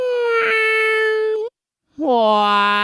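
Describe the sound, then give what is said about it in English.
A cat's meow played backward, heard twice: a long, steady, whining tone that ends in an upward swoop, a half-second pause, then a second louder, brighter repeat, clear. “we're doing a kitty cat meow here in round one. You're going to hear it two times backward, and then we'll see what you sound like.”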